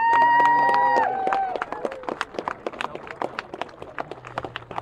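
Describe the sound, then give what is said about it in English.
A crowd breaks into steady applause at the prize-giving of the Hunts Motorcycle Solo Championship at the 2022 Southern 100, many hands clapping in a dense, lively patter that carries on to the end, after a brief opening of sustained tonal sound. “Ladies and gentlemen, give a big round of applause to John Brown from Hunts for giving the awards.”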